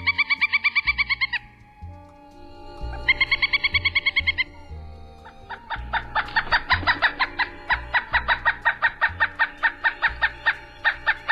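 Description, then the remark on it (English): A pileated woodpecker (Dryocopus pileatus) gives a loud, rapid, laughing series of repeated ringing notes: two short bursts, a pause, then a longer run of calls that keeps going, clear with no talking. “The call sound of the pileated is similar to that of a smaller woodpecker, the northern flicker, but louder and kind of crazier.”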